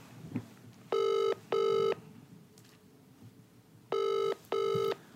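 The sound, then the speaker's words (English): A phone ringback tone from an outgoing call to a piano tuner and repairman in the Midlands sounds in two double-pulse bursts, each pair of steady electronic tones separated by a pause, clear over quiet background noise. “Oh, this hopefully he answers.”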